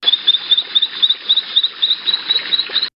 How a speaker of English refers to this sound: The closest I could find was not great audio of this frog, whose name I forgot to write down, which I think is somewhat related to the new frogs. Enjoy, a frog.